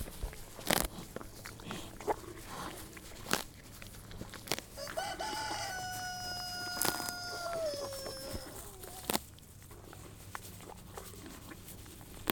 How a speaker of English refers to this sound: If you guessed a horse eating grass, you are 100% correct. And the birds.